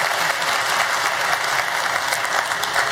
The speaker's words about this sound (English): Give them one more round of applause as they go that way. You can go that way.